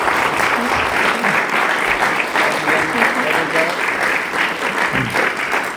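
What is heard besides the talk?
audience applause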